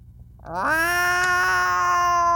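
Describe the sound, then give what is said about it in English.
A single long, drawn-out cat meow that rises in pitch at the start and then holds steady, loud, with no talking around it. “And there's this fat silver cat there. And the fat cat looks at me.”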